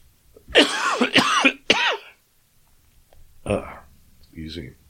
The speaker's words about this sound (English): I'm still coughing from COVID.